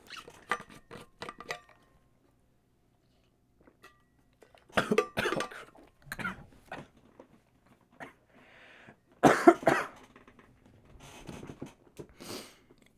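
coughing

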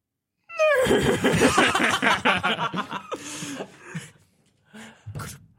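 cat meowing

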